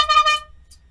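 A single short horn honk blares loudly for under half a second, then cuts off, leaving only a faint low hum underneath.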